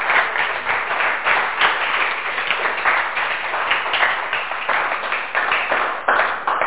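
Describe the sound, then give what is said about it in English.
A crowd claps together in praise of God, sustained applause in a dense, steady wash of hand claps that carries on for several seconds without pause, fairly loud. “Give God a hand clap of praise today.”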